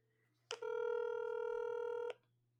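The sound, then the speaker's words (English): A single steady electronic phone tone sounds for about a second and a half as a call is placed, starting and ending with a click, clear over a faint low hum. “let's pull him up on the old telephone.”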